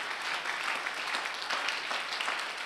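A crowd claps steadily, many overlapping hands forming a dense, continuous crackle of applause at moderate volume, with no voices standing out.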